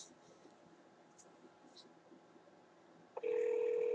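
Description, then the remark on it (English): A quiet, hissy phone line sits idle for a few seconds after dialing the Washington, D.C. office of Senator Kristen Gillibrand of New York, then a loud, steady telephone ring tone cuts in near the end as the call starts ringing. “Calling Senator Kristen Gillibrand.”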